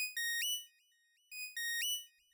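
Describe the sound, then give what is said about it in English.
A communicator rings with a bright, high electronic chirp pattern, two quick tonal bursts repeated twice, clear and alone with no talking. “Corell, as you're kind of fleeing this building to try and make your way through what is already a dense crowd, your communicator goes off.”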